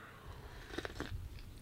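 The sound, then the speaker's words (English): Someone takes a quick, quiet sip of a drink, with a couple of soft slurping and swallowing clicks and no talking. “Let me take a sip of this.”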